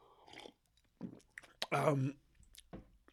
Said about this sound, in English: Pardon me, I'm going to take a sip here of my drink.